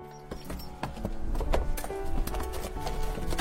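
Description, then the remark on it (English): Horse hooves clip-clop in a steady, uneven string of sharp knocks, moderately loud, with a soft sustained tonal hum underneath, as a horse enters the Mega Barn Arena at Tiny Dancer Farms. “Please clop right this way into our magnificent Mega Barn Arena.”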